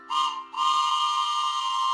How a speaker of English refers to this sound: Oh, I know what that is. It's the Bible train, and it's pulling in town just in time.